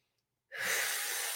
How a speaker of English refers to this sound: Okay, so we're going to just, you repeat after me, tapping on the body, breathing in and out.